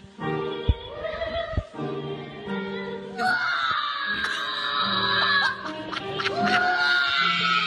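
A boy of about 4 or 5 years old screams loudly and almost continuously, shrill and piercing, in front of a boys choir singing sustained harmonies.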